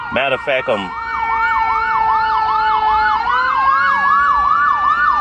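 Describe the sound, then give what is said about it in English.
An ambulance siren wails loudly on Basin Street in a fast, repeating up-and-down yelp, its pitch shifting slightly midway as it passes, after a brief burst of voice at the start. “Ambulance passing by.”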